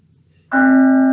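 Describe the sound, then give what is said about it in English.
A single mindfulness bell is struck after a brief quiet moment, ringing out with a clear, bright tone and layered overtones that hold steady and loud as it sustains. “Ah, there's that bell again. It's called the mindfulness bell for a reason.”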